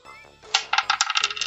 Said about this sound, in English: How many? Three dice. Certainly. Okay. Three.